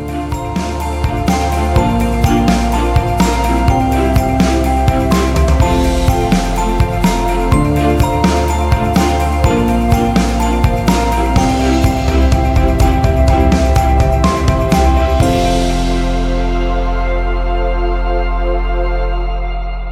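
Upbeat theme music plays loud and steady with a driving rhythmic beat, ending around fifteen seconds in on a sustained chord that slowly fades out. No voices are heard.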